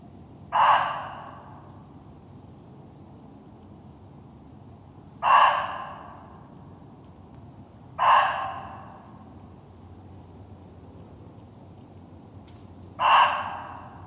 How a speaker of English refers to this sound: Muntjac are small deer, little deer, just to be... and they do have a very strange voice. I have heard them a few times. I haven't recorded them, which I would love to do. Here is one for comparison.